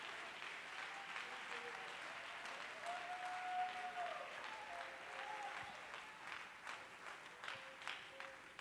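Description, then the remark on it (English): A church audience claps their hands to the Lord in sustained, dense applause, with some faint voices and cheers rising above the steady clatter. “Clap your hands to the Lord and give God praise.”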